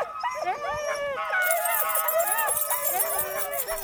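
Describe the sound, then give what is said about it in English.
A chorus of excited sled dogs yips, howls and barks continuously, many voices overlapping in high, wavering cries that fill the scene without pause. The dogs are getting fired up as harnesses are readied for a run. “You can see in the dogs now, they're starting to get fired up a little bit.”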